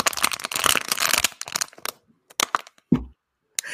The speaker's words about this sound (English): Can we have a moment? I'm gonna open a water bottle for you all. Please just quiet. Quiet down.